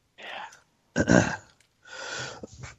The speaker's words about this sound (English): Excuse me, I got a cough.